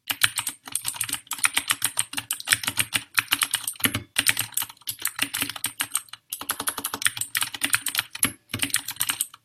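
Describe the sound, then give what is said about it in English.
Rapid, continuous clacking of keys on an RGB-lit mechanical keyboard, crisp, with dense bursts of keystrokes and brief pauses between runs of typing out random gibberish. No one speaks. “I'll give you some ASMR on the keyboard”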